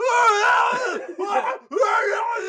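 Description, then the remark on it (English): Loud, anguished screaming blares from a radio comm system hacked by an enemy, in three sustained wailing bursts with brief breaks between, sounding like several people being tortured crying out at once. “So it's just a, is the radio still screaming at us?”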